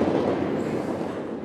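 A train rushing past close by, a loud, steady roar of rumbling and rattling noise that holds for the whole moment with no voices over it.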